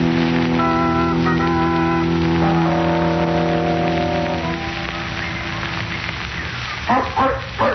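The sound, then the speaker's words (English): A steady rain-like hiss with sustained droning tones runs throughout, and near the end a dog, Peter Blair's dog running around in a park, gives a short burst of two or three barks, moderately loud. “Is that his dog running around?”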